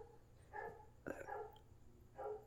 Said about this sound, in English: I don't know what they are barking to, but it's all about like introducing myself. Now it's all about dogs barking in the background. Oh, god, I thought it stopped.